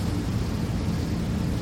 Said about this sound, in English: The air conditioning is as loud as it can be.